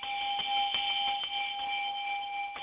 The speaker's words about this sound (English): That bell is for first-time callers.